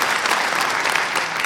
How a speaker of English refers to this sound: Come on, let's just affirm that. Hey, you know, that was an okay clap if you were in cricket.